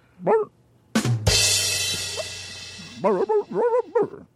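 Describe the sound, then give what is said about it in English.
A person imitates a dog barking: a single yappy bark, then a loud burst of rough noise, followed by a quick run of four or five bouncy barks. “all you can do is bark.”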